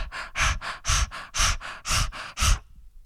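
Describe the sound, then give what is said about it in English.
Rapid, heavy open-mouth breathing, loud, with about ten quick breath pulses in a steady panting rhythm before it stops abruptly near the end. No talking. “Maybe open your mouth and sort of start breathing.”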